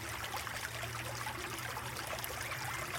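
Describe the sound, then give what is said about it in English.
Steady rushing water from three waterfalls falling into a pool in a grotto under moonlight flows without pause, a dense, even hiss, fairly soft and continuous, with no voices. “into the grotto's soothing atmosphere, you begin to hear the sound of rushing water.”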